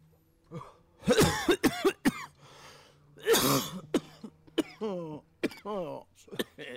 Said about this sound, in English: I coughed. Yeah, I coughed. Sorry.